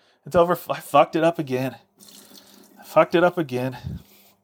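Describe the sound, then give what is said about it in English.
Rainwater pours in a soft, steady stream over and inside a turkey until it overflows, audible mostly during a pause between two bursts of a man's animated speech, then fading beneath his voice. “You just want to pour the Pure Russian Rainwater, preferably inside and outside of your bird.”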